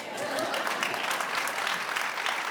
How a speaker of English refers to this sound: Ladies, y'all ought to be clapping.